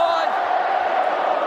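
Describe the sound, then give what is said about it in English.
A loud, steady roar from the Collingwood crowd at the MCG during an Australian football match against Brisbane, a dense wash of many voices rumbling continuously without pause for the whole moment. “The Collingwood crowd starts to rumble around the MCG.”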